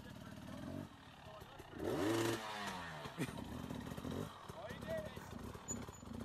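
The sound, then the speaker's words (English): A motorcycle engine revs hard, its pitch sweeping up and down in a loud burst midway, with rough engine rumble and voices talking around it, as the rider does an endo, lifting the back wheel, then hits the gas and spins it to open a beer bottle with the tire. “He did an endo, so the back came up. And then he hit the gas field, spun it.”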